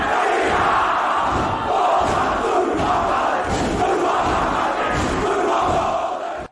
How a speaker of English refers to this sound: All right, I love that cheer. I have no idea what they're saying. I don't even know. They're maybe in Australia or something